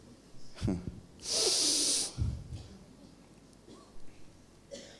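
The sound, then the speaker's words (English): An audience exhales loudly together in one breathy whoosh lasting under a second, surrounded by quieter background noise and brief low murmurs. “Let me know if you're breathing, please.”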